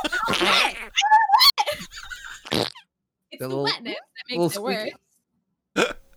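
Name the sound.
wet fart sound effect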